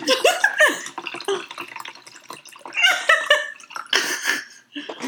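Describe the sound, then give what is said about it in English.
Pomegranate juice splashes and glugs as it is poured into a glass, in uneven bursts with a rising ring as the glass fills, stopping briefly before pouring again. “I poured too much because I was watching the fucking screen.”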